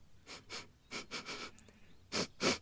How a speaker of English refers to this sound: Just then, a bright pink flower drifted down from a tree and landed in front of the group. Its fragrance was so sweet. The three mice stepped towards it to get a better sniff.